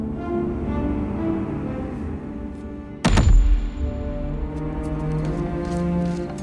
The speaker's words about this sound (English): And when it hits the floor, it doesn't bounce. And there's like this thud sound effect when it happens. And it's like, it is such a weighty moment.